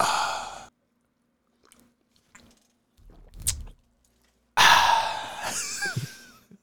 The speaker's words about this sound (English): That was a delightful sip